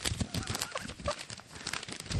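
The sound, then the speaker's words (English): A huge pile of paper mail from a mailbag is dumped on the floor and crumpled: a dense, continuous crinkling and rustling with scattered sharp crackles, fairly steady in loudness throughout. “He just dumped a huge pile of paper on the middle of my floor.”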